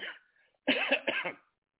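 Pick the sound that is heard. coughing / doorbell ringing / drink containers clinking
coughing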